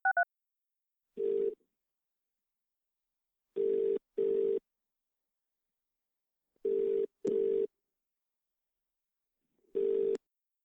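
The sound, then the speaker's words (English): A phone is speed-dialed with a quick electronic blip, followed by a steady ringback tone sounding in short paired bursts, repeating with pauses between. No one speaks. “get me my Twitter phone and speed dial Bell”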